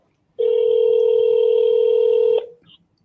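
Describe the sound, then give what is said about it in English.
A single steady telephone tone sounds loud for about two seconds at the start of a phone call, then cuts off abruptly, followed by a faint brief blip. No one speaks. “Here's the phone. Here's the conversation.”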